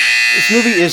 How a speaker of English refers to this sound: Hit the buzzer.